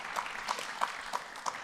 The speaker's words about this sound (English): Why don't you give these guys a round of applause and thank them.